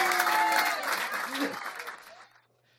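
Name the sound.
audience applause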